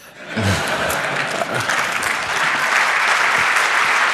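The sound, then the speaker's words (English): A large audience claps steadily and loudly, a dense wash of applause that swells in quickly and holds at full strength without pause for several seconds, during a talk about Tor and Cloudflare captchas. “All of those people clapping wish you would solve the Cloudflare captcha issue.”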